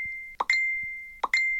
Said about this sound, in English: Megan awoke one morning to her phone pinging relentlessly with Facebook messages